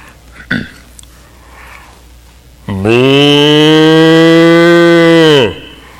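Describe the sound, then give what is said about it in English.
A person imitates a cow with one long, loud, sustained moo lasting nearly three seconds, preceded by a brief sniff or breath, otherwise quiet. “I've got a whole repertoire of animals that I do, but I'll just give you my cow.”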